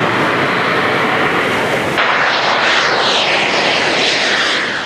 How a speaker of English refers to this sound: Now, it's like a scene from a Hollywood movie. A British inventor wearing a jet-powered suit set a new world record in England.